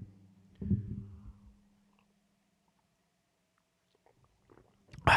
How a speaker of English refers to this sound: so if you're got a drink in front of you, you know, or a glass of water, a cup of coffee, a protein shake, some amino acids, whatever it could be, cheers to you right now. I'm going to take a little sip and we're going to do some closing notes here.